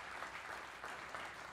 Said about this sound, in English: Can you guys clap